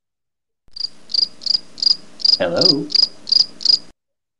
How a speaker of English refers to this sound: Uh-oh. Crickets.